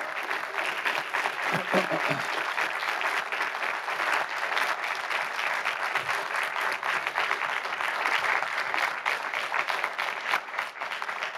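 A large audience applauds steadily for about eleven seconds, a dense, even roar of many hands clapping at once that holds its loudness throughout, with faint voices briefly mixed in.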